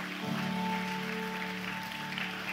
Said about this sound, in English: Let's give a huge hand clap to anyone who prayed that prayer.